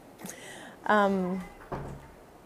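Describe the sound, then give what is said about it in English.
A door creaks with a drawn-out squeal, then shuts with a soft, muffled thud. “And just close the door behind you, okay?”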